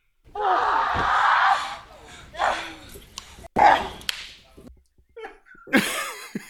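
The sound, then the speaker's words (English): Sharp slapping impacts from a wrestling match involving Rhea Ripley, a few scattered hits mixed with breathy grunts and gasps, fairly loud, with short pauses between bursts. “That was wrestling.”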